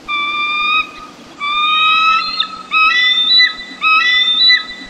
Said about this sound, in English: A flock of glaucous-winged gulls hover as a bald eagle swoops down to grab a salmon. Another eagle perches in a nearby tree, enjoying its catch. Listen for the loud, vibrant chirps and gull-like squeals of the bald eagle.